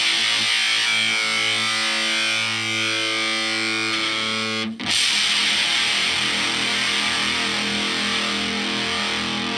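Heavily fuzzed Danelectro electric guitar played through a fuzz pedal, with a buzzy, saturated tone, sustaining a chord for several seconds, then a brief cutout and a new, bright, gritty chord that rings on. No talking.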